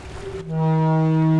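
UWM's research ship Niskay in a harbor, starting out to head up the river towards town: a brief, rushing wash of water and engine noise, then a loud, steady low horn blast that holds strong to the end.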